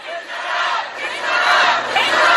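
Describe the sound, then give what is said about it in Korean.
A large crowd at a rally, cheering to give strength to bereaved families of the Itaewon disaster victims, roars and shouts together in one sustained, loud cheer, a dense wall of many voices that swells and holds steady without pause. “네, 우리 이태원 참사 유가족분들의 힘을 주기 위해서 다시 한번 함성 들어보겠습니다.”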